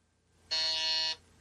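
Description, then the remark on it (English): A single loud game show buzzer sounds for about half a second during a character-guessing quiz, a harsh, steady, high-pitched electronic tone with a sharp start and stop, with no talking over it. “Do you just watch me buzz and then you buzz before me?”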